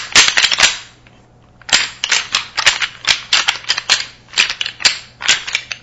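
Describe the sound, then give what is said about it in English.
Rattling antlers imitating fighting bucks: a burst of sharp, hard clacks, a brief pause, then a longer run of loud, irregular clattering and grinding knocks. No one speaks. “You could either do just an initial crack, and a lot of times you'll hear that, especially when you're out and you know, observing deer over feeders or whatever when they're in the pre-rut, or a crack and a little bit of a tussle.”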